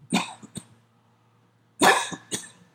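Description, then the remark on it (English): A harsh coughing fit: two quick bursts of raspy coughs, a brief pause, then another cluster of three sharp, forceful coughs, fairly loud with no talking. “And as I need to share this, I found out just recently, because I'm going to start coughing. Hold on.”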